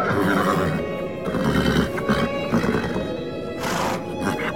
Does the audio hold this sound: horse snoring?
yes